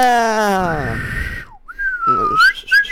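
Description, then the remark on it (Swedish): Someone trying to learn to whistle makes a wavering, unsteady tone that slides and breaks off, then resumes with a thin warbling pitch, with some breathy noise underneath. “som försöker lära klara? Sig vissla.”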